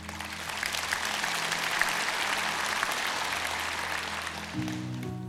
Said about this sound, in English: Jesus, we're clapping because we have tried.